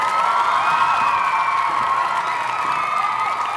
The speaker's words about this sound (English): One more round of applause for my duet partner and the love of my life